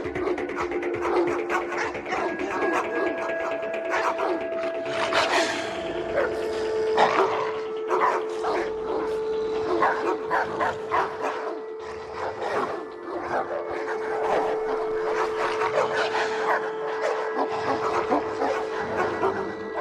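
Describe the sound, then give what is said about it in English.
Several dogs bark and growl together in a dense, overlapping chorus, loud, with snarls and yips running continuously over a steady background drone. “Now he has this recurring dream where all the dogs kind of come back and get their revenge.”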